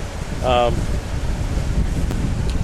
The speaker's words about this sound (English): It's a little windy.